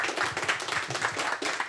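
An audience applauds steadily, many hands clapping together in a dense, even patter that holds at a moderate level throughout the short stretch, with no voices on top.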